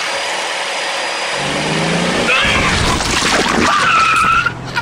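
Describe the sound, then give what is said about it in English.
A 4x4 Ford Excursion is started and put in reverse. Its engine roars and revs loudly while tires squeal and skid, building over a few seconds and cutting off abruptly near the end, with no voices. “She turned her car on, put it in reverse, and they say sadly felt a bump beneath the car.”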